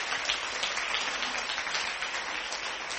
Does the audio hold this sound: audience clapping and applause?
yes